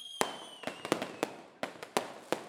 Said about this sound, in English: Here we got our episode name, confetti blasts and fireworks and whatnot.